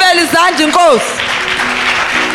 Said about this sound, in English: Clap for the Lamb of God.